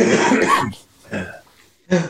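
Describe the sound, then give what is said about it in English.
Several people cough at once in a loud, overlapping burst, followed by two shorter coughs after brief pauses, all harsh. “By the synchronized cough there.”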